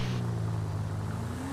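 A video game car's engine drones steadily at low pitch, cruising slowly behind an RV going about 10 miles an hour, with one tone starting to climb near the end as it speeds up to go around the RV. Loud, continuous, no voices.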